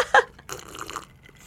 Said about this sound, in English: Just take a deep sip of Pels.